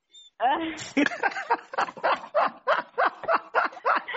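A dog barks in a rapid, steady series of about ten sharp, high yaps, loud, with no pauses between the barks.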